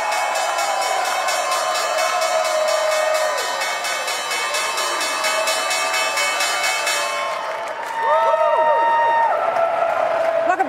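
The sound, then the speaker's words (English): On the New York Stock Exchange floor at the morning market open, a crowd claps and shouts steadily and loudly throughout, beneath a sustained ringing bell that continues for several seconds before the cheering swells louder near the end. “Lots of happy faces and shouting and clapping here this morning at the New York Stock Exchange.”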